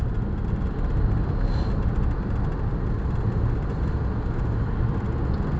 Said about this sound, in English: That would have been a good place to stop, I guess, but there is way too much goddamn traffic. And I'm going to be in this vehicle probably for a long time.